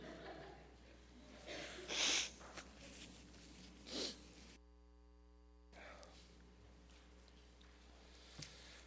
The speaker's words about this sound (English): What I lack in vocal vitality, I will try to make up with hawking and snorting and coughing.